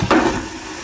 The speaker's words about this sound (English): Just for anybody, just for clarification, this is the difference between an airport loo flush and a regular. Here you go.